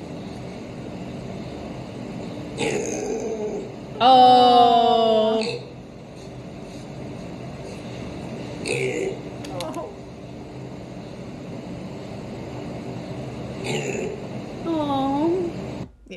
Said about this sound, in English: It's like a pig. It's calling out. Like it's like hello. Where is everybody? Where are you guys?